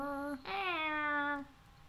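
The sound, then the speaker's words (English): Someone vocally imitates an animal's whine: a short, steady nasal tone, then a longer, drawn-out whine that sags slightly in pitch before stopping, clear with no other talk. “It's like a whine, like an animal whine.”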